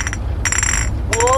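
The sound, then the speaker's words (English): Three bright clinks of three glass Coca-Cola bottles held on a man's fingers and knocked together in a slow, uneven rhythm, each leaving a high, shimmering tone that lingers briefly over a low, steady background rumble, from a film scene with the line "Warriors come out to play." “And he's clinking three Coca-Cola bottles on his fingers together.”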